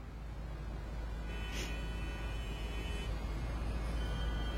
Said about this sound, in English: I'm gonna see what's up with this traffic.